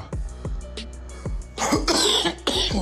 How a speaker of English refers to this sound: excuse my coughing, man. I really wish I didn't cough there